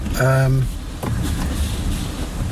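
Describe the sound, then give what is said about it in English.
An automatic car wash sprays water and soap across the car's front and side windows, heard from inside the car, in a steady rushing hiss and rumble, opening with a short droning tonal whine. “It's now coming past our windows. We've been sprayed with water and soap.”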